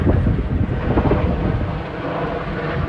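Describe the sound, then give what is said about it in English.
A rescue helicopter passes overhead, a loud, steady low roar with a throbbing rotor pulse running through it the whole time, and no voices. “There was a helicopter last week, and I've cut it out, and now we've got a fucking another one.”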